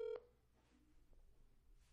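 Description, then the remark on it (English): A single short, loud telephone keypad tone sounds right at the start as someone dials a friend, then fades into faint background noise with no talking. “I'll try and give him a call.”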